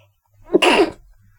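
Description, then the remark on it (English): A single loud sneeze with a short breathy intake building into a sharp explosive burst, then quiet. “That's me sneezing.”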